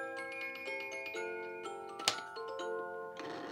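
Mechanical clock ticking at a steady pace, layered with sustained ringing tones that shift pitch, and one sharp, louder clack partway through. No one speaks.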